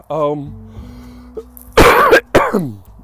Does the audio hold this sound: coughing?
yes